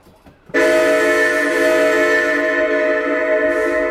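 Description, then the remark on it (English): A loud, steady train whistle blares in abruptly after a brief quiet moment and holds its rich, multi-toned pitch as one long continuous blast until the end. “is jolted awake by two long whistles and the broadcast of the conductor as he moves to the next car, presumably to make the same announcement.”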